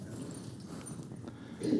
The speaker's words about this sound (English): Why don't you hold your keys up? Why don't you shake your keys? You hear that? I didn't say stop.